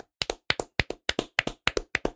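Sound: hand clapping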